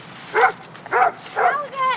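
A dog named Bowser barks three times in a steady rhythm, clear, with a softer whining yelp trailing after the last bark. No one speaks.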